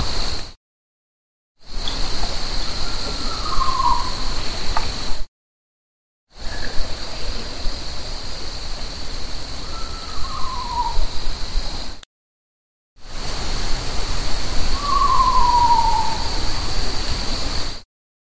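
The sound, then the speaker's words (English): An owl hoots three times, each a short falling call in a separate snippet with silent breaks between, over steady hissing background noise and a constant high-pitched drone. “I think there's five total owl clips.”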